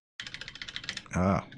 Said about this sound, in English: I can't even read what I'm typing here.